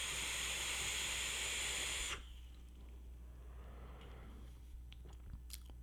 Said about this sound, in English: Well, I'm still going to have to do that thing where I just sit back here just for a hot second and vape this.